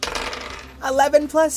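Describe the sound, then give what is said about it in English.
Dice clatter and tumble across a hard surface in a quick burst of clicks, followed by a few brighter rattling knocks as they settle. “and we'll make it an easy roll.”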